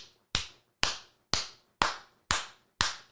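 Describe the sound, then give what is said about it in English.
Six sharp hand claps in a steady, even rhythm about half a second apart, each crisp and bright with a short ringing tail, and no voices. “I hear a lot of clapping out here.”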